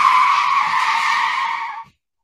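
A loud, sustained screech of car tires skidding for almost two seconds, steady and high-pitched, then cutting off abruptly into silence as the car stops.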